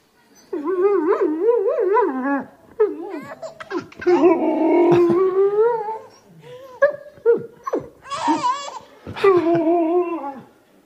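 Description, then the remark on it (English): A dog whimpers and lets out wavering, drawn-out howls, trading sounds with a baby's giggles and babbling in short bursts over about ten seconds. “Dogs, babies, you can't go wrong with that, can you?”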